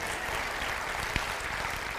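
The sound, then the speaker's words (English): A crowd claps for Hungary, a dense, even patter of many hands for a couple of seconds, with no voices standing out. “You could clap for Hungary.”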